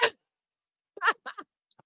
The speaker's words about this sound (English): God bless you, baby. Damn, I had a sneeze out of nowhere. Oh, God.